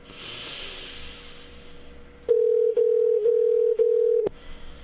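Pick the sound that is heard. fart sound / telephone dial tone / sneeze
telephone dial tone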